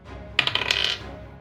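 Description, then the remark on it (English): A quick burst of small hard clicks and clatters as dice tumble across a table for a damage roll in a game, lasting about half a second before settling. Fairly loud, with no talking. “Maybe this dice is also going to dice jail.”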